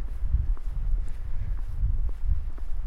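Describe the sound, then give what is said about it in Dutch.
Steady footsteps crunch along outdoors at a walking pace, fairly loud, as someone walks across the former grounds of Kamp Vught, now a prison, on the way to barrack 1B, with a low rumble of open-air background and no talking. “En het is nu al een gek idee om rond te lopen op de plek waarvan ik weet dat Chef Paimans hier vastgezeten heeft en allemaal die ontberingen heeft meegemaakt waarover hij in zijn dagboek schrijft.”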